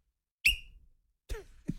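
A single short, piercing whistle blast, high and chirp-like like a smoke alarm beep; brief voice-like bursts follow a moment later.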